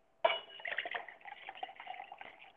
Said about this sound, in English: Sounds like you're pouring a drink, if I am. Yeah, that. It sounds like you are pouring a drink right now. Yeah, I'm sorry about that, folks. Absolutely, sir, that's I got about a cup left of my Tito's. I'm mixing it with Simply Lemonade. Blueberry.